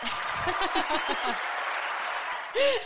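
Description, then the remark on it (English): A burst of crowd applause and cheering, with whoops and voices over a steady wash of clapping that fades, then a short bright tonal flourish at the end. “This deserves the... Cheer.”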